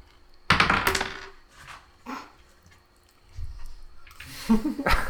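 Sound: dice being rolled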